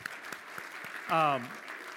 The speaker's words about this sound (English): Congratulations, y'all. You did it. Great job. Give yourselves a round of applause here, y'all.